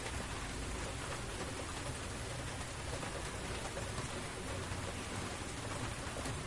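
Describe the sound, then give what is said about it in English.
Heavy spring rain pours down in a dense, unbroken hiss, steady for the whole stretch, with a low rumble of thunder running faintly underneath and no voices. “It's really coming down now.”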